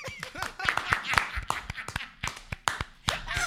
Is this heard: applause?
yes